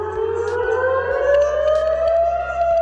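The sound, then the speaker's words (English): Air raid sirens wail loudly and continuously in Israel on a Saturday morning during a Hamas attack, their tone slowly rising in a long sustained sweep, with a low steady rumble underneath and no voices. “Saturday morning, thousands waking up to sirens and explosions.”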